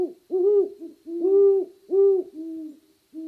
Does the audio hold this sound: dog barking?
no